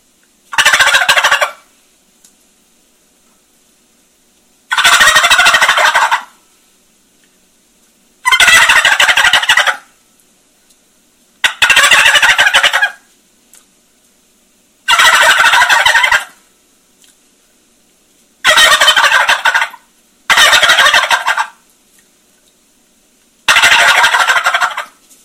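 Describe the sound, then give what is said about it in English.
Eight loud, rattling turkey gobbles blown on a tube call, each a short burst of about a second, separated by brief silences, with no talking. “But just kind of just a couple gobbles on a tube call.”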